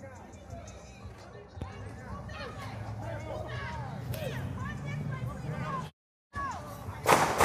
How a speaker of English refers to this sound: Just got to be careful here with some gunshots. Excuse us. It sounds like gunshots. I'll let you know what this is. These seem to be gunshots.